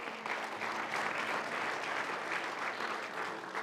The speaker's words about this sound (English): Come on, give the Lord a hand of praise.